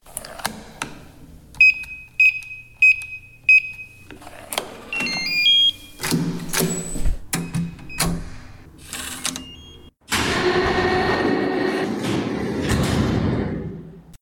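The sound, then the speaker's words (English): Four evenly spaced electronic warning beeps ring out, followed by clunks and a mechanical grinding as a massive door slides open, ending in a steady loud rumble. “Please stand clear of the really big door. Mind your toes.”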